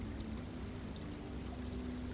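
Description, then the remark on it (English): A distant stream trickles softly and steadily, a faint continuous wash of running water with no voices and no breaks in its gentle babble. “The distant trickle of the stream,”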